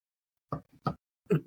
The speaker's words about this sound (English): So we're just going to take a minute. I'm going to sip on some of my tea.